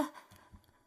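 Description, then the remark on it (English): A single sharp sneeze, caused by dust in a supply closet, bursts out at the very start, a short breathy blast that fades within a fraction of a second, leaving only faint low rumbling behind. “Gesundheit, you're not sick, are you?”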